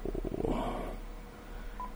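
A phone call being dialed over Skype audio: a quick, fluttering run of electronic dial tones, then a short, faint beep after a pause. No one speaks.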